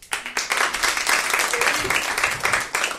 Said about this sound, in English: Or do you want to hear a little more monologuing? I'll leave it to you. Clap if you want me to monologue a little bit more.